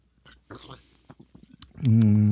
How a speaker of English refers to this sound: I need a fresh little sip here. Wash it down. Of this really nice leisurely soda.